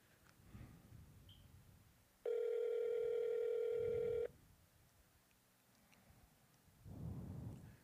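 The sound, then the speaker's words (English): A telephone rings on an outgoing call to the speaker's mother: one steady, buzzing ringback tone lasting about two seconds, loud, set against a low background rumble with no talking. “There we go. The phone is ringing.”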